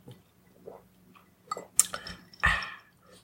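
A quiet sip from a drink: faint wet slurps and small clicks, a sharp brief clink, then a fuller gulping burst near the end, with no talking.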